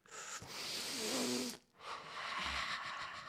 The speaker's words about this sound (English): Sniffing. A night of sniffing. ASMR sniffing.